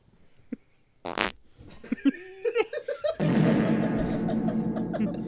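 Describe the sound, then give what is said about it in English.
A man's loud fart blasts right into the microphone, a sputtering burst followed by a longer buzzing, flapping stretch, then breaks into a sustained rough rasp. “He's farted in the microphone.”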